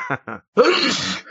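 Two short breathy gasps build up, then a single loud, noisy sneeze bursts out and trails off with a brief sniff at the end. No speech accompanies it.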